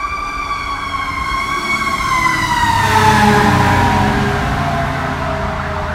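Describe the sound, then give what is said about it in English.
Several emergency sirens, from about ten vehicles, wail together as they pass by outside in the rain, their layered tones sliding down in pitch over steady engine and traffic rumble, swelling loudest midway before easing off. “Jesus, zombie apocalypse is happening. This is, like, 10 cars.”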